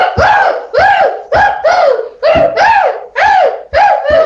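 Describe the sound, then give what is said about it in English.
A person voices a rapid run of loud, throaty, cooing bursts in paired beats, about nine in all, imitating an agitated pigeon with a harsh, strained edge. “The angry pigeon.”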